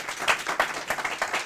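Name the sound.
audience applause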